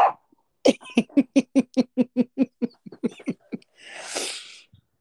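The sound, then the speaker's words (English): A puppy barks indoors in a fast, steady string of about a dozen sharp yaps, followed by a brief breathy huff and snort at the end. “Oh my God, he in here barking.”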